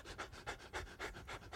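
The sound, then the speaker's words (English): Rapid, rhythmic heavy panting like a dog, breathy huffs repeating about every quarter second, made by a crowd of people imitating the sound together, steady. “Everybody go like this. Because that's what desire means. To chase after, producing heavy panting.”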